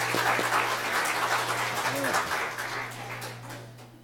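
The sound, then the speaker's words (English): An audience applauding the winner of a count, a dense, steady patter of many hands clapping together, holding at an even loudness for several seconds with a low electrical hum underneath. “Let's give Doris a round of applause.”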